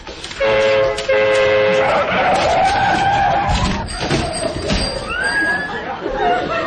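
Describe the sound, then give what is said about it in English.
A car with no brakes skids loudly through traffic lights as they change to red, with shrill, wavering tyre squeals over the rumble of traffic, punctuated by brief horn toots and a background commotion of voices. “Now, straight over the traffic lights, Jock said.”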